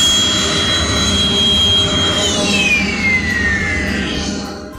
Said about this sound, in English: And then the engine startup button that you heard also works as the shutdown. You hit it again.